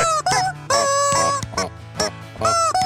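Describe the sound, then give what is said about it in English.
Animal-like croaks, clucks and grunts from an AI machine strung together into a sung melody, loud, phrase after phrase with brief gaps, sounding like a frog, chicken and pig singing a carol. “Frog, chicken, and a pig.”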